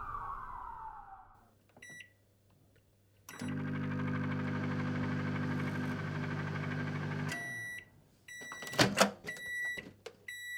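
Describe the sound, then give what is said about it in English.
A microwave oven runs with a steady electrical hum for about four seconds, framed by short electronic beeps before and after, with no voices. “the aniline and brodo that his wife had reheated in the microwave.”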